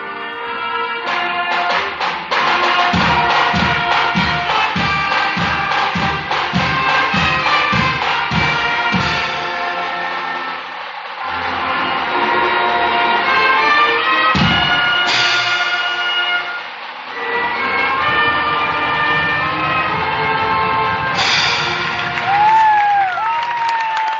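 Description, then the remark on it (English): A national anthem rings out loudly in a gymnasium before a basketball game, full and sustained, with regular low thumps early on and a crowd's murmur blending in throughout. “The playing of the national anthem as we get sent for basketball action here tonight on the Breeze, KLIQ 94.5.”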